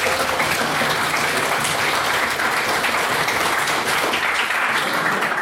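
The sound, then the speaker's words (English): Steady, sustained applause from an audience for all of the evening's speakers at a debate: dense overlapping clapping that stays loud and even throughout, with no voices standing out. “And if you could please get one more round of applause for all of our speakers this evening.”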